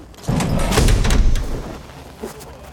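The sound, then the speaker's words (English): A loud, rumbling rush of air bursts out as a heavy door opens, roaring for about a second before tapering off, with a faint knock near the end. “So you should hear a pretty loud rush of air when they open this door.”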